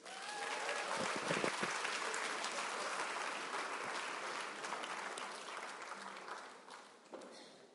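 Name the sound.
applause and cheering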